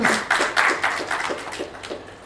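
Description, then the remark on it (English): Audience applause for author Kavita Kane: a steady run of bright, crisp claps in a fairly regular rhythm, moderately loud and fading slightly toward the end, with no voices over it. “A big round of applause for Kavita.”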